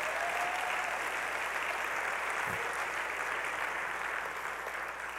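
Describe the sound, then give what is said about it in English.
A church audience applauding together as a clap of praise to the Lord, a steady wash of many hands clapping that holds at an even, fairly loud level for several seconds without any voices on top. “Come on, give the Lord a clap of praise today.”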